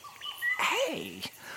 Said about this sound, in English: The whistling and trilling of the parrots is especially beautiful today.